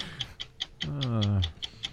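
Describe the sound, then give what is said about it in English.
A clock ticks steadily and crisply, about five ticks per second; midway through, a brief wavering vocal cry rises over the ticking before fading away. “If you turn that clock off, that baby would go back to sleep.”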